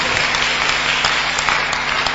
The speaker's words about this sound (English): Those who are clapping, you're understanding the message.